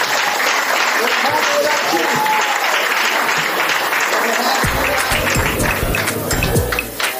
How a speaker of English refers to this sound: Give her one more round of applause, because it wouldn't happen.